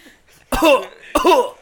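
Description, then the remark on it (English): Two loud, harsh coughs burst directly into the microphone about half a second apart, each with a raspy, throaty tail, against an otherwise quiet background. “Next time you have a coughing fit, don't do it directly into the microphone.”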